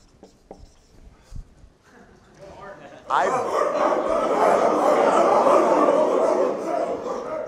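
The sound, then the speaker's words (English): After a few quiet seconds, a person lets out a loud, sustained, gravelly bark-like roar, imitating a dog as part of daily body work, holding it for several seconds before it tapers off. “I bark every day.”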